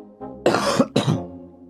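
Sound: cough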